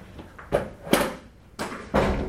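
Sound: door being closed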